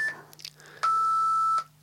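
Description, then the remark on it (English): A single steady electronic timer beep, loud, holds for under a second at a fixed pitch after a few soft clicks and shuffling sounds, with a faint low hum underneath; the beep signals that it is time to sum up and wrap up. “Well, that beeping means it's now time to sum and wrap up.”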